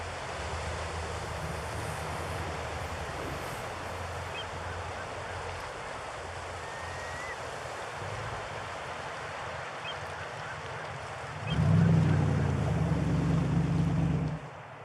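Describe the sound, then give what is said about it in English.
A steady wash of Atlantic Ocean surf off Long Island fills the scene, a broad hissing roar with no one speaking, and a deeper rumble swells in near the end as a larger wave rolls in. “The large arts and crafts style house overlooked the Atlantic from the front and a small unnamed river out back.”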